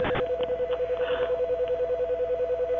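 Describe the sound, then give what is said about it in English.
A telephone emits a steady, continuous electronic tone that holds throughout with a faint pulsing quality, preceded by a couple of brief clicks at the very start. No one speaks. “Why is the phone doing that? Why is it making that noise?”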